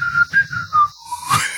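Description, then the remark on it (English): A person whistles a short tune of several distinct notes, the pitch stepping around and ending on a sliding rise, fairly loud with no talking. “What's the whistling sound like?”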